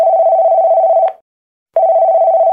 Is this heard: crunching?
no